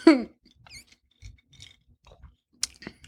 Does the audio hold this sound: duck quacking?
no